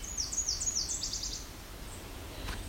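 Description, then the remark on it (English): A distant ovenbird sings a quick series of repeated, high two-part notes lasting just over a second, then fades into a quiet outdoor background with low rumble and no talking. “That's sounding like there's the oven bird.”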